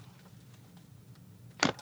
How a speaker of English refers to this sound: So I'm going to shuffle our first tarot deck here. And this is just the traditional tarot deck. Just let me know when to stop. I am shuffling now.